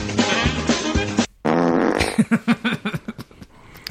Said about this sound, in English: You love the fart noise, don't you?